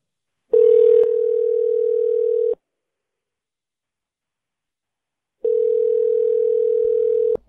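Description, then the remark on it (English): A phone line's ringback tone sounds twice as a call is put through to a manager, each a steady two-second buzzing hum with a few seconds of silence between. It is clear and fairly loud, with no voices. “Okay, you're going to hear a ringing sound, and then Mr.”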